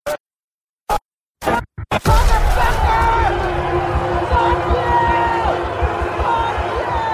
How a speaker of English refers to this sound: At 2:30 p.m. on January 6th, the crowd at the east side of the U.S. Capitol is a mass of heaving bodies. Rioters are surging forward as police in body armor attempt to hold the line.